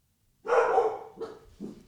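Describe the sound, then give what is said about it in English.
A dog barks three times: one long, loud, drawn-out bark followed by two shorter, quieter ones, with no talking in the background. “I think the dogs agree with me.”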